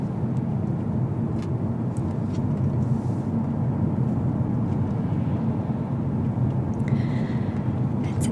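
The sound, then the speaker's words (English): Steady, low rumbling road noise from inside a car driving on quiet roads on a Sunday night, a constant drone of tires and engine with a few faint ticks and rattles on top and no talking. “But it's my pleasure to give you a ride today.”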